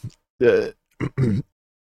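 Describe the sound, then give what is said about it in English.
A fairly loud coughing fit of three throaty, voiced bursts: one longer cough, then a quick short one followed by another longer one, with no talking. “excuse me, I had to cough.”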